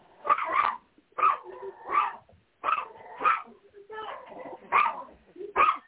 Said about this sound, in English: Someone's talking to you. It doesn't want you to talk on the phone. Well, the dogs are barking. Like, get off the phone.